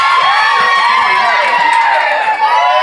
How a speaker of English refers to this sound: They're getting a lot of screams.